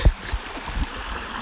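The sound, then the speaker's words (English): A babbling brook in central Japan burbles and gurgles steadily, water flowing over stones with small splashy bursts, no voices present. “Sometimes, though, you just gotta shut up and listen to the babbling brook.”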